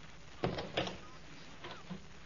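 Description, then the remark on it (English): Two sharp knocks land on a front door in quick succession, distinct, followed by quieter faint thuds. “If there's somebody at the door for me, I don't want to see nobody.”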